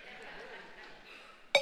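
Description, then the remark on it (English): A drinking glass gives one bright, ringing clink near the end, sharp and brief with a short high shimmer, over a low, steady murmur of voices. “This glass is a picture of your life. Now, it's pure.”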